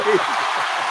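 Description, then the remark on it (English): A short burst of applause, a dense hiss of clapping from several people, steady throughout, with a voice faintly audible underneath at the start. “All right, round of applause.”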